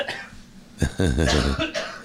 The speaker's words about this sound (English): I'm coughing it up, but it's I probably got something from Darla.